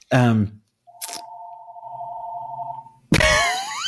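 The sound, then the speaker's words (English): A single steady electronic ring from a house telephone holds for about two seconds, fairly loud, with brief bursts of someone talking just before and right after. “Pick up the phone. That's me. No, it's the house phone.”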